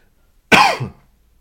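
A single loud cough bursts out of near silence, trailing into a brief raspy throat-clearing rumble before the quiet returns. No talking accompanies it.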